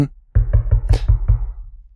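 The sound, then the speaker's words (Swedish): Six quick, evenly spaced knocks on a locked door, fairly loud with a hollow, woody thud, followed by a short fading resonance. No one speaks. “Ja, då knackar jag på.”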